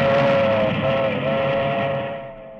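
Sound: passing milk train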